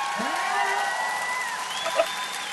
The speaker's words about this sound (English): that was a virtual audience cheering for him.